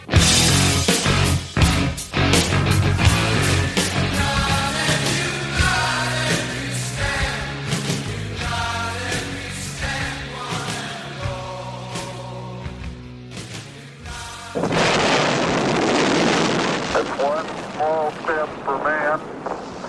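A loud heavy metal song with dense distorted guitars and pounding drum hits, shifting about three-quarters through into a harsher, noisier wash of sound.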